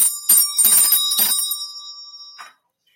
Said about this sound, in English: Oh, let me ding my... Fairies would like for me to ding my bell.